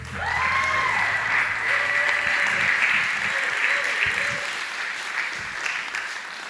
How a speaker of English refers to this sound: Anyway, let's go back to the stories. Please clap for